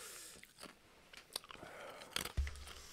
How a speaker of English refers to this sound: I'm probably chewing into this mic for a lot of this.